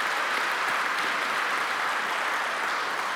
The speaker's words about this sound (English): Can we just give a hand clap of praise for that?